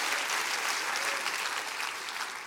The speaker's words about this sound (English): Come on, somebody clap your hands and say, I receive that. I receive that.